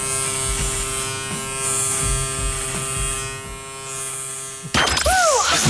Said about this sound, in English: He's obviously never shaved that bit.